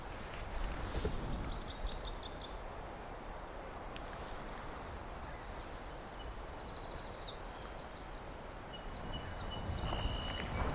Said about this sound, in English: So we got song sparrow in here. Don't know if I heard it in this particular section last time. More than one of them too.